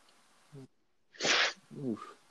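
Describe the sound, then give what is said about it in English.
A single sharp, breathy sniffle bursts out loudly, framed by a short vocal grunt just before and a brief voiced murmur right after. “You know, sniffle.”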